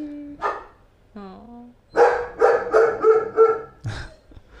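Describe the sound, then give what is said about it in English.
A female dog barks at people pacing around out front in a quick burst of four or five loud, sharp barks, preceded by a couple of short whines and followed by one more bark. “Thank you, Chief. You're scaring the puppy.”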